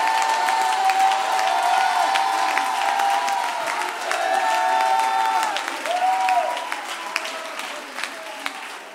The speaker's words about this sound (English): Oh, clap your hands and shout. Clap your hands and shout.